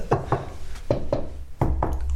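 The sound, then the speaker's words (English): Six sharp knocks on wood, struck in three evenly spaced pairs over a low steady background hum, with no one speaking. “After the first knock, make a wisdom saving throw.”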